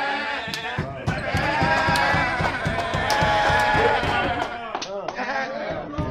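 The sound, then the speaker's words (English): Teammates in a locker room after a game bleat like goats over one another, the imitations wavering and overlapping, with some clapping and smacking mixed into the noisy din. “And then he only got better as the game went on, which is why he was once again serenaded by bleeding goat sounds from his teammates when he returned to the locker room.”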